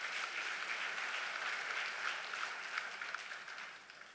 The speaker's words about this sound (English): Praise the Lord. Come on, give the Lord a clap offering.